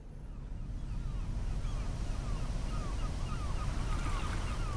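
A steady low engine rumble under rushing wind and sloshing waves from a weather-battered ferry crossing open water. The noise stays loud and continuous throughout, with faint high cries drifting over it.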